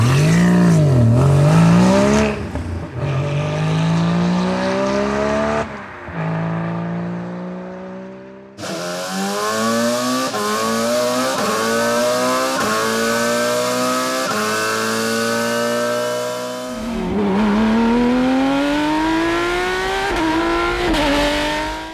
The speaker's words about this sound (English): It's all about the engine sounds of famous Porsche cars. So I play the sounds first and then I raise the question. So three sounds, please listen.